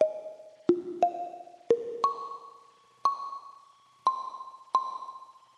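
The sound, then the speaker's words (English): A plinky synth plays a short melodic line of about eight bright, plucked notes, each ringing out with a soft reverb tail as the reverb mix is turned up, clear and upfront with no voices. “You can hear a little bit of the reverb there.”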